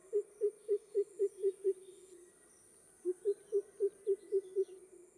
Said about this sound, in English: Every now and then, the greater cuckoo announces itself with a series of deep, hooting notes.